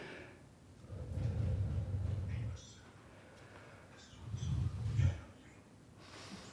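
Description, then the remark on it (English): Two slow, heavy breaths of a speaker reading Bible verses, close to the microphone, each a loud, low rushing swell lasting over a second, separated by a quieter pause. “Is that me breathing?”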